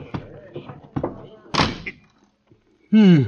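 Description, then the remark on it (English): A supply closet door is pushed shut with a few knocking thumps and a heavy slam, followed by a brief pause and a voice speaking at the end. “Here's a door. Oh, for supply closet. Well, I'll have to squeeze in.”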